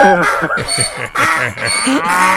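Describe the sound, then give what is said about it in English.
A voice in a studio loudly imitates a donkey-cow hybrid, letting out a drawn-out, wavering moo blended with a bray, continuous for a couple of seconds with brief breaths between. “We're going to tell her that our donkey and our cow accidentally mated, and we don't know how to take care of a dong cow. and we've got the dong cow in studio here.”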